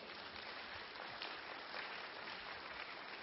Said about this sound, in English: Can you clap for yourselves?